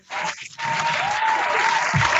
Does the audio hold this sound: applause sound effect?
yes